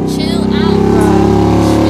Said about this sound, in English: Who needs a motorcycle that loud?